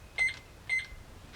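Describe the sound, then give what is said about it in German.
Two short, high electronic beeps with faint clicks, about half a second apart, as keys are pressed on a safe's keypad. No voices, just a low background hum. “Dann tippen Sie jetzt bitte mal folgenden Code ein.”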